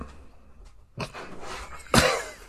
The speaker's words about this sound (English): So we're just letting the dog in now. Oh, or it's closing the door.